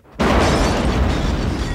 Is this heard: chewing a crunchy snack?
no